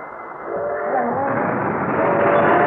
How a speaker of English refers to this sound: What's that? Is that the train? Yeah, it's just at the crossing. Oh. Oh, no.